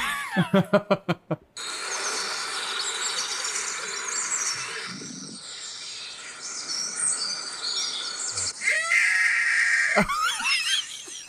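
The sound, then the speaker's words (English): An eagle screech: a quick burst of clipped, stuttering calls, then a long, loud, raspy scream held for several seconds, followed by another harsh shriek near the end. No one talks. “Yeah, so that eagle screech, like in this. That's a wake up hawk.”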